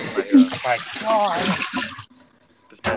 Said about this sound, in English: That was me dumping water from what I made for dinner.